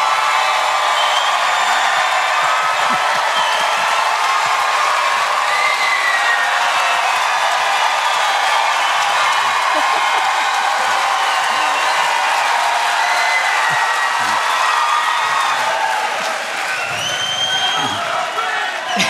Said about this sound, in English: Hey, clap in 3, 2, 1!